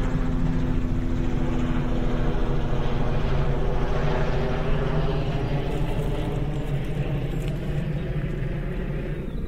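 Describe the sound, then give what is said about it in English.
A helicopter roars overhead above rock pools by the water, its steady, loud engine drone and rotor thrum filling the whole stretch without a break, fading only slightly toward the end. “Helicopter!”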